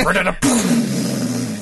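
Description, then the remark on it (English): A voice mimics the speaker's own old car engine trying to start when turned on, a rough, strained vocal sputter followed by a sustained low droning rumble with a wavering pitch, fairly loud and continuous. “Sometimes when I turn my car on, it's an old car and it kind of goes.”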